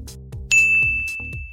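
A single bright bell ding, marking the end of an exercise in a workout, rings out clearly and sustains, its high tone ringing steadily over a background of rhythmic music.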